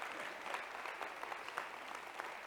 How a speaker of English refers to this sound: Give the Lord a hand clap of praise for that guy right there. Right there.